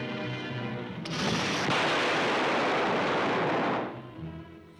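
A loud explosion in a played film clip, as an asteroid is hit and disintegrated, bursts in after a second and roars as a dense, sustained rumble for about three seconds before cutting off, with a faint tonal, music-like background before and after.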